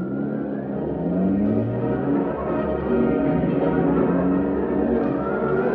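A car engine revs up and pulls away to follow another car, its pitch rising and falling through gear changes as it drives off, a steady loud roar with no voices.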